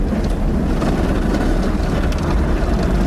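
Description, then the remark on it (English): An automatic car wash machine cleans and polishes a car, running with a loud, steady roar of rumbling motors and rushing spray, broken by brief hissing bursts, with no voices. “Being in the heart of the beast that is the car wash machine”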